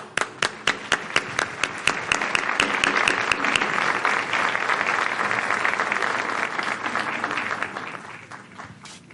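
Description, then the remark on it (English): A round of applause from a crowd welcoming a speaker, starting with a few distinct sharp claps that quickly swell into dense, steady clapping, then gradually thinning and fading out over about nine seconds. “Please welcome Mr. Dominguez Ferraez with a warm round of applause.”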